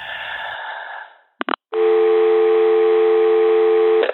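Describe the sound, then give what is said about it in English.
After a caller hangs up, a hiss of line static fades away, two quick clicks follow, and then a loud, steady telephone dial tone drones on without a break to the end, with no voices. “that would explain the raspiness to the voice as well as the abrupt end to the call”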